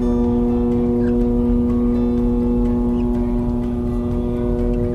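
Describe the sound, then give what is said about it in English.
A ship's foghorn blares one long, steady, deep tone that holds for the whole stretch, loud and unbroken over a low rumble of engine and water, as the ship creeps through smoke off the West Coast. “Off the West Coast, ships sounded foghorns as they crept through smoke that was, well, it was ….”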